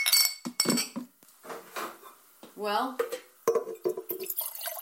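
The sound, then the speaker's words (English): Glass jars clink sharply several times while liquid drips and trickles between the knocks as the jars are filled one after another, with a person speaking briefly over the clatter. “that's one filled. Here's a second one.”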